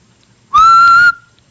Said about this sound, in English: Blow the whistle.